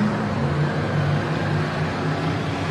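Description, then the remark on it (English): Heavy monster truck engines roar continuously and loudly, a thick, steady rumble with a low droning hum running underneath, with no voices and no pauses. “you can hear the roar of these vehicles”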